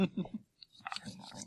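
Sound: chewing gum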